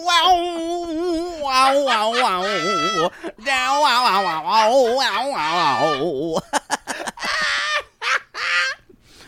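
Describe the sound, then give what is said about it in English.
A voice imitates a wailing guitar solo, with loud, bending, wobbling notes sliding up and down for several seconds, then breaking into quick choppy bursts. “guitar solo.”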